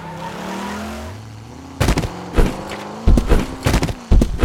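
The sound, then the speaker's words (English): A truck's engine revs and accelerates with a rising whine as the gas pedal is floored, then a series of loud, heavy thuds and crunching impacts hit in quick, irregular succession over the continuing engine noise as the truck plows into a horde of zombies. “He put the vehicle into drive and floored the gas pedal, plowing into the horde of zombies in front of him.”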